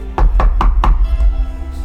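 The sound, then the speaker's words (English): Four firm knocks on a wooden door in a quick, even rhythm, clear, followed by a low ambient hum. “I'll knock on the door.”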